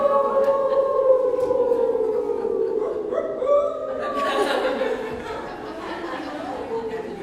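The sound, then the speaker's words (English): Several voices howl together like wolves, long rising and falling wails that overlap loudly, with bits of chatter and a dog-like bark mixed in. “Another thing that's really fun is to howl like a wolf.”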